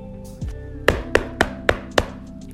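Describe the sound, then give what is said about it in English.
Five loud, forceful knocks on a door land in a quick, steady rhythm, hard and insistent, over a faint humming background with a softer thud just before them. “The pigs were deep in conversation when they heard an angry knock on the door.”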